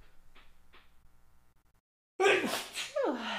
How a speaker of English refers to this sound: I'll have to sneeze. Hold on.